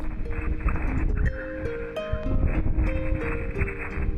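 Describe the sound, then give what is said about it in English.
Sonified magnetosphere waves from a tiny feature in a spectral plot, several types of wave superimposed in the magnetosphere: overlapping whistling tones that rise and step in pitch like chirping birds, layered over a steady rushing hiss, with no voices. “That sound turned out to be several types of wave superimposed in the magnetosphere, a rare find.”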